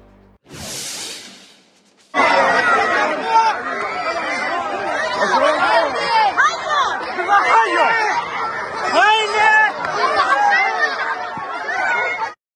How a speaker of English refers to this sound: That panicked crowd was internally displaced Palestinians in Gaza's southernmost city of Rafah, reacting to a strike just feet from the tent city they now call home.